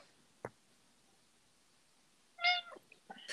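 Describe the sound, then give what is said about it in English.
A cat meows loudly, a drawn-out cry followed by a couple of shorter calls, after a single sharp click and a stretch of quiet. “So, cat!”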